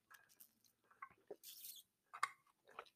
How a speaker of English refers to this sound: Let me take a little sip of my water, sorry.